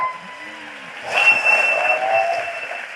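At a stand-up comedy show, after a quiet start, an audience breaks into sustained applause for comedian Katerina Vrana, a dense wash of clapping that holds steady to the end, with a few thin whistle-like tones riding above it.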